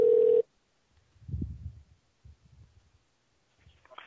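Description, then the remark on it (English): A loud, steady telephone tone sounds briefly at the start as a phone call is placed to a man, then cuts off, leaving faint low rumbling and muffled line noise with no clear voices. “I'm calling a gentleman who almost had his penis cut off.”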